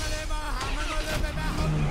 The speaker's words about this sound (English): Oh, there goes the garbage guy.